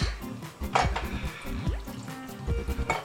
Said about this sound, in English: Add more water, because this is going to cook a long time, and it's going to absorb the water.